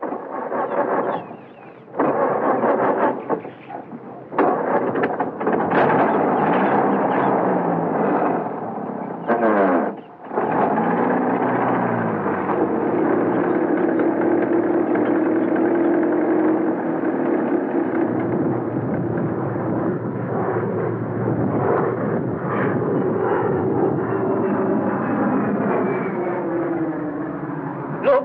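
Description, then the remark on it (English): An old car engine sputters and coughs in uneven bursts, then catches into a loud, steady rumbling roar that revs and pulls away, continuous, with no voices. “In that ridiculous old car.”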